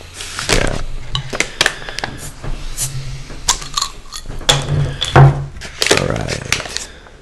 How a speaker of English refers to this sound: I'm gonna move these two glasses away. I still feel like you don't want to knock them over.